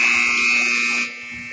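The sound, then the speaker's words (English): A loud, sustained electronic buzzer at an Indians versus Eagles basketball game blares steadily for about a second to start the second quarter, then drops in level as its harsh, steady tone continues on the court. “And so the buzzer sounds, and we are set to go with another second quarter of action.”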